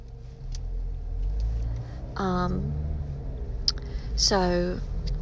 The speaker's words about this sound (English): Okay, sorry, I'm in traffic.